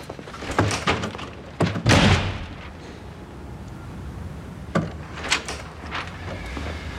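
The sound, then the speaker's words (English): A door is slammed shut with a heavy, booming thud, surrounded by several sharper knocks and bangs before and after, fairly loud, with no talking. “That's why I slammed the door.”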